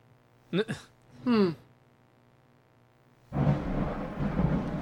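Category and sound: nature, thunder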